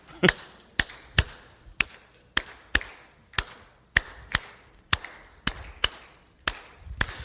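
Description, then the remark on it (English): An audience claps out a steady, repeating rhythm: about fourteen sharp, crisp claps over seven seconds in a loping pattern, with no voices speaking. “Clap with me.”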